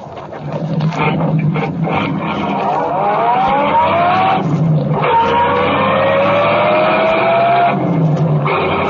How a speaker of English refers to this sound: Go on, drive. Chase that car.